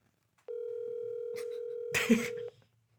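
A steady, unbroken telephone tone hums for about two seconds as a call goes out, with a brief burst of noise near the end before it cuts off.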